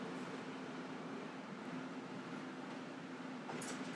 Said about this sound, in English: So much traffic, so much noise. I'm sorry, guys, podcast listeners. Bear with me.